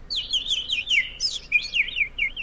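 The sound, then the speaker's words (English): A person whistles a rapid, warbling run of high bird-like chirps and trills, imitating bird noises as a hidden talent, fairly loud, continuous for a couple of seconds with no talking. “Yeah, I can make bird noises.”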